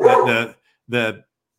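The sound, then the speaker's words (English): A dog named Lily barks three times as the mailman arrives, two quick barks back to back, then a short pause and one more, loud and clear with nothing else around it. “Now, that's not Chris. That's your dog.”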